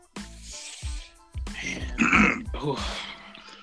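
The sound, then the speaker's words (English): A man clears his throat a few times in quick succession, fairly loud, with rough guttural bursts and no words spoken. “Was clearing my throat.”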